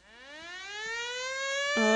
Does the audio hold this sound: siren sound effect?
yes